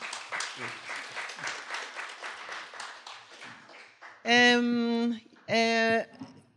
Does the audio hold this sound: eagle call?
no